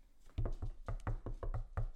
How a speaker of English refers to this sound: That's not me tap dancing. That's me knocking on the desk.